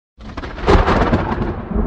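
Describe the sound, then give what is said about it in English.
A thunderstorm with a deep, rolling rumble of thunder that swells quickly and keeps growling, loud, with a steady wash of rain beneath it and no voices. “The storm broke in Chattanooga one night in 1906”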